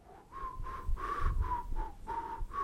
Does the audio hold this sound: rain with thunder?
no